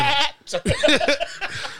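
A goat bleats several times in quick succession, wavering, nasal cries, fairly loud, one running straight into the next with no other sounds around them.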